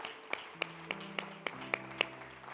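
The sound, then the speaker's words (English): An audience claps in unison to thank God, sharp hand claps landing on a steady beat about three or four per second, over a soft sustained musical drone. “Somebody clap your hands and thank God for tonight.”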